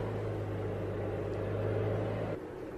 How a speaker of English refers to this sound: A load of kids coming out on jet skis now as part of a tour. They'll be on vacation, and they're going by oblivious to the fact that maritime working life is going on all around them.